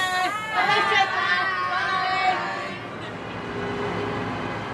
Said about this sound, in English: A few streets across, children from the nationalist area are getting on their buses to head off to County Meath and away from the tension in the city.